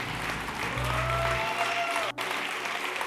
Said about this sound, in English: Can you give the Lord a great big hand clap as we close?